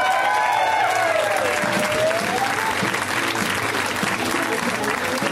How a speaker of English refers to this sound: Not your applause, but your applause was... Your applause was standard, actually. It was acceptable. Not that I deserve it. Like, you should go ape shit.